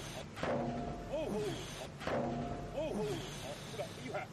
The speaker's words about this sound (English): I want to see them hitting with a sledgehammer. Okay, here we go. To break through one of the panels of the new bridge.